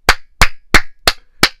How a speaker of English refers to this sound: A tweet? That ain't enough. Let me give you some hand claps.